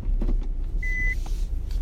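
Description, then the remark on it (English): A single short, steady high-pitched beep sounds over a continuous low car engine rumble as a car backs into a parking space. “Excuse my beep, you guys. I'm backing into my parking space.”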